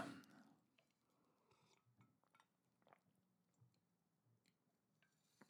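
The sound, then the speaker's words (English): Someone takes a sip of water: a brief louder slurp at the start, then soft wet mouth clicks and quiet swallowing sounds, with no talking. “Yeah, it's probably always good to listen to someone have a drink of water when you're listening to a podcast.”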